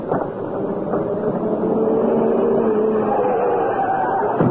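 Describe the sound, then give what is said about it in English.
A car engine roars steadily and grows slightly louder as it closes in at speed, its droning pitch shifting with the approach. No voices can be heard. “What's that? It's a car. In this way, but fast.”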